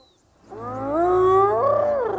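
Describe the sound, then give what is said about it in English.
A young male lion, alone at the boundaries of its pride's territory, lets out one long, loud roar, its voice swelling upward and holding strong before tapering off, with no one speaking. “But even as powerful of an animal as a lion, when they're isolated, they can find themselves in trouble.”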